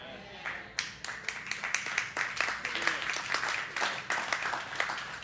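Scattered, half-hearted applause from a church audience, a few claps at first, then thin, uneven clapping that never swells into a full ovation.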